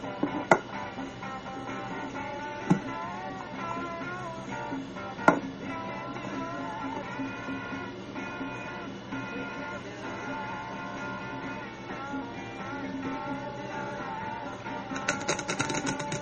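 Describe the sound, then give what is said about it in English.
A deck of cards being shuffled: a soft, continuous papery rustle with a few sharp snaps scattered through, over a steady tonal background, and a quicker flurry of riffling near the end. “She's shuffling, let's skip ahead.”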